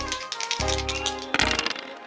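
two dice being rolled

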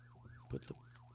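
alarm going off

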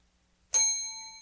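small bell ringing

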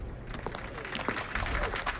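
crowd clapping

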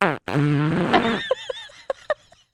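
fart

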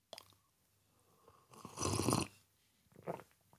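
sipping a hot drink

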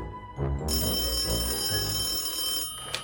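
telephone ringing

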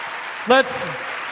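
audience applause

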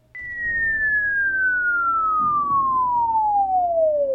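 whistle

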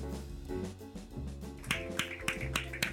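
audience slow clap

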